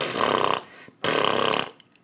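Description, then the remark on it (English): Two loud, wet, buzzing lip splutters, each about half a second long with a brief pause between, made with puckered lips to mimic a fart. No one speaks. “Mary puckered her lips and began spluttering.”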